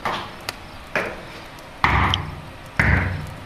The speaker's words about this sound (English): And that's where it's hollow and they plastered over. I don't know if you guys heard that, but when we just did the recording, I went knock, knock, and something went knock back, and it was really terrifying.